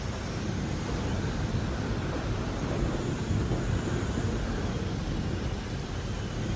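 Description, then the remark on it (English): A steady, loud roar of storm noise fills the whole stretch, heavy low rumbling like thunder blended with rushing wind, continuous with no clear breaks and no voices. “Do you think it's safe to go in the forest to get out of this storm?”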